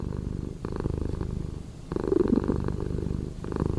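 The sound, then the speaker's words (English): A cat purrs steadily, a low rumbling drone that swells and eases in rhythmic waves with each breath, with no voices over it. “Get a nice cat that's purring.”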